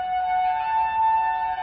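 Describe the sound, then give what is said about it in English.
A loud emergency siren wails steadily on a single sustained tone, its pitch creeping slightly upward, with no voices present. “You know, we hear that siren, and if you're on the fire department, you respond right now.”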